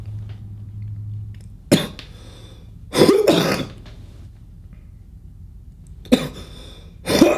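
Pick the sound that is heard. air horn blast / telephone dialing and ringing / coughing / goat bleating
coughing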